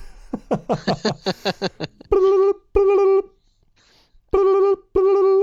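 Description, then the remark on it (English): A retro phone ringtone for an incoming call on a space phone: a quick warbling trill, then loud steady electronic rings in two pairs of bursts with short pauses between them. “Call comes through on the space phone.”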